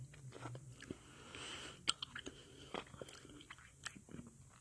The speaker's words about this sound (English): And let me chew.